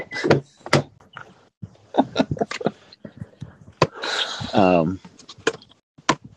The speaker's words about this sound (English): But yeah, I'm actually in the car. I'm just getting out of the car and into the market.